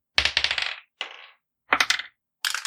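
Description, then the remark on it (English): Dice clatter and rattle across a hard surface in four quick bursts of sharp, rapid clicks, with brief silences between each roll, as players roll for initiative in a tabletop game. No one speaks. “All right, everyone roll initiative.”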